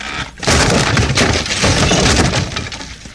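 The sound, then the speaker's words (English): A loud crash of a broken chair, one a person had been taped to, breaking apart, with a sudden burst of splintering cracks and clattering pieces that rattle on for about two seconds before settling. No one speaks. “I could break a chair way better than that.”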